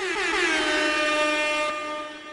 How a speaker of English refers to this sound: Insert air horn.